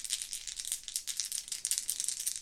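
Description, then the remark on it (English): An action die and two challenge dice clatter and rattle continuously for a couple of seconds in a roll plus heart, landing 8 on the action die and 7 and 9 on the challenge dice; a bright, crisp tumbling sound with rapid irregular clicks, fairly quiet, with no one talking. “We've got 8 on the action die, a 7 and a 9 on the challenge dice for a weak hit.”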